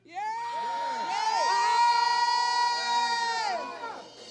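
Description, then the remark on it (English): An audience screams together on cue in one loud, sustained burst lasting about three seconds, rising quickly and then trailing off as individual shouts fade out. “Can you scream?”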